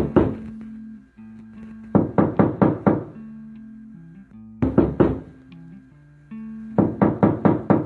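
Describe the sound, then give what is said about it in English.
Repeated knocking on a locked bedroom door in bursts of four or five sharp raps, with pauses between groups, loud, over a low tonal hum. “knocks on the door”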